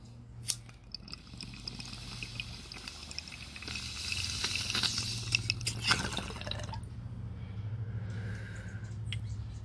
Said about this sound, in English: All right, I'm going to take a redemption bong hit. Wish me luck.